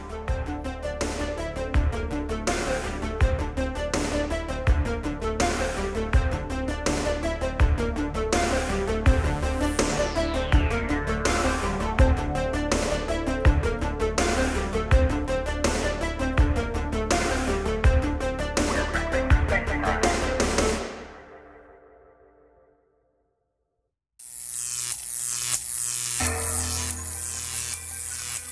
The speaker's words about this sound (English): You know something funny? This isn't even the music for Shop Smart. It's not. This is the music for The Buzz, which is normally our news segment.